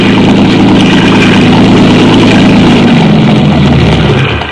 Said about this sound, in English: Speeding toward us was a motor launch filled with men, and with a small boat in tow.